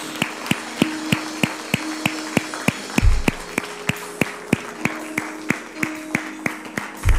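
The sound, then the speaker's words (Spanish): Applause in a steady rhythmic beat, given to Jesus after a prayer, sharp claps falling about three per second, over sustained tones of music in the background, with no one speaking. “Un aplauso al que vive.”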